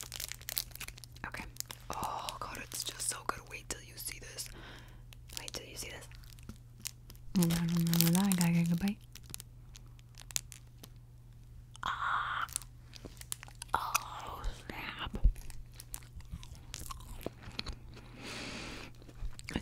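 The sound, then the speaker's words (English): Crinkling and tearing of the plastic wrapper of a Chocorramo sponge cake (ponqué), followed by soft, wet chewing and bites of the spongy cake, with faint murmured voice sounds in the background. “Vamos a comer un poquito de ponque.”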